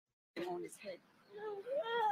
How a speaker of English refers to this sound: Kids crying, always crying in the background when the adults are acting like monkeys.